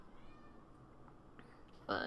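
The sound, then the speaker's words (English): A cat gives one short, loud meow at the very end, after a stretch of quiet background noise with only a faint, thin mew just before it. “I need to relax my cat right now.”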